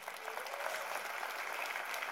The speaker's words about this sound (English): Give you all a round of applause for coming.